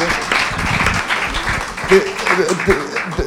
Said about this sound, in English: Could you just give Mags a round of applause then?